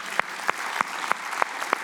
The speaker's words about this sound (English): We have some amazing, let's clap for our deacons. We have some awesome deacons.